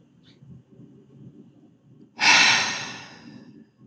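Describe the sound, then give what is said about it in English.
A quiet, slow breath in through the nose, then a loud, airy sighing exhale out through the mouth that gradually fades away, a deep cleansing breath. It is a single breath with no talking. “If you want to take 2 deep cleansing breaths in through the nose and out through the mouth with a sigh, if that feels good for you.”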